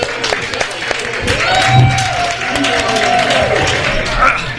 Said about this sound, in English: Round of applause for Jeff Belanger, everybody.